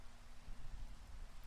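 Steady, soft rain falls in a continuous low hiss, with a dense rumbling wash underneath and no voices.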